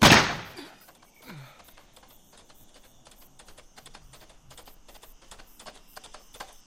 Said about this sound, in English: I heard gunfire.